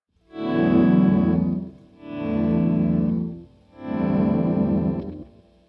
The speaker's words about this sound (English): So here's just the Rainbow Machine. Yeah, I like the pitch down. Now, if I mix that in with a little volume pedal, just by itself, already we're not sounding very guitar-y.